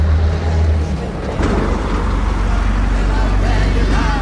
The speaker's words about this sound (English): Des camions passent. There are trucks going by.